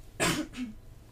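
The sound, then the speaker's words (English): A sharp cough bursts out, followed right away by a smaller, throatier second hack, then quiet. No one speaks. “I'm so sorry, I really needed to cough.”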